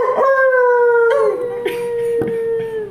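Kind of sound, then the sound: sound effect, wolf howl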